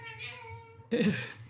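A cat meows twice up close: a long, steady tonal cry followed by a brief pause, then a louder, rougher second meow that trails off.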